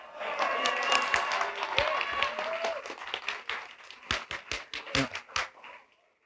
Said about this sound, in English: Now, while I'm glad that you applauded that, let's actually reflect for just 2 seconds on what it is we're celebrating.